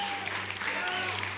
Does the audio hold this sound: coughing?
no